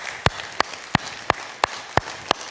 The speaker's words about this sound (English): applauding.